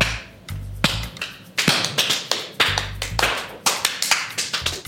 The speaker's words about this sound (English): Then we slapped the basil before tasting it. How rude.